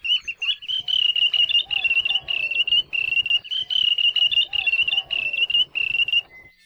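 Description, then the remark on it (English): A wandering tattler's (ulili) alarm call, warning other birds that hunters or predators are nearby: loud, piercing high whistled notes repeated rapidly in quick bursts, ringing almost continuously for several seconds with brief gaps, clear. “Their English name, wandering tattler, refers to their alarm calls to warn other birds when hunters or predators are nearby.”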